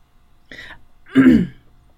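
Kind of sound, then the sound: human body sound, sneeze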